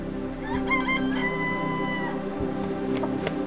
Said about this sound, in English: Those birds over there, they are the jungle fowl. They're like chickens, but they are technically not chickens, right?